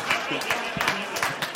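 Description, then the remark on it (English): A short burst of audience applause, dense overlapping clapping with a few sharper claps standing out, steady and fairly loud for under two seconds, with some crowd voices mixed in. “You're applauding alcoholism.”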